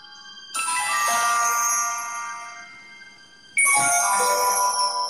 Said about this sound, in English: I think, though, I just heard that a transmission came in.